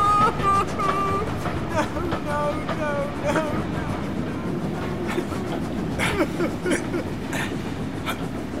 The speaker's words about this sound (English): Let's get off this blinking train! I don't think it's going to stop!